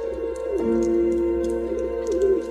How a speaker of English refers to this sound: Sometimes after work, I go to the park and feed the birds.